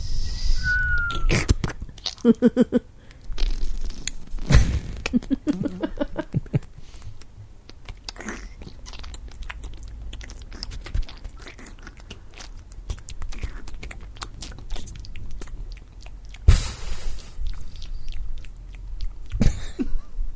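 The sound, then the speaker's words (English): A voice imitates the noises of a decomposing corpse: a run of clicks, slurps, hisses and smacking pops in irregular bursts, with sharp loud snaps scattered through a steady murky mouth-made gurgle, standing for creatures eating the body and gases hissing and popping as they escape. “Yeah, you gotta have a microphone down there and just listen to the scuttling, slithering noises of all the things eating you. Of the sort of hissing and popping of the the gases as they escape from your corpse.”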